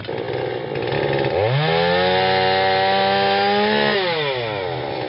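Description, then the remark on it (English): A loud construction saw at a house construction site idles with a rough rattle, then revs up into a steady, high buzzing whine for a few seconds before dropping back down to idle. “Darn house construction.”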